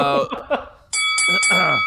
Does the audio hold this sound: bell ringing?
yes